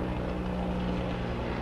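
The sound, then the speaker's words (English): An airplane's engine drones steadily overhead, a continuous low rumbling hum with a tonal buzz that holds at an even, moderate loudness throughout, with no voices. “Am I hearing an airplane?”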